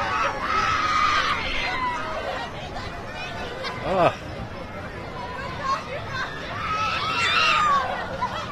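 Shrill screams rise out of a noisy crowd at St. Mary's Feast, one long burst near the start and another toward the end, with steady babble and chatter between.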